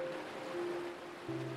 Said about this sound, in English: Breathe in deeply and imagine the waves approaching the shore.